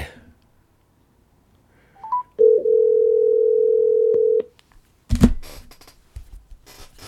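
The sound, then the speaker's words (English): An outgoing phone call to Billy Sample rings once with a steady two-second ringback tone, preceded by a couple of quick electronic beeps and followed by a sudden clatter and rustling on the line. “let me see if I can get Billy on the phone.”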